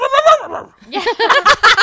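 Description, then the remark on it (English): A person imitates a dog, producing a whiny, pitched-up yelp followed by a quick run of short yips and bark-like bursts. “Anybody's looking for a dog voice.”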